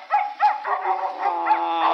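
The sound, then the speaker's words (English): Several dogs, including a prize bull dog named Tramp and a brindle dog named Bologna, bark and yip in sharp overlapping calls in quick bursts that blend into a continuous, excited chorus with some whining tones, as handlers get the dogs ready for a match. “Say, keep them much quiet, will you?”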